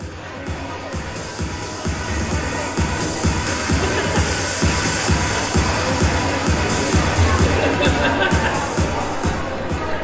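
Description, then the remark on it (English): A steady, loud din of the crowd at a NerdCon convention panel, with many overlapping voices blending into continuous babble and occasional shuffling, holding constant throughout. “But if you can get past the din of the crowd, I think you'll enjoy the discussion.”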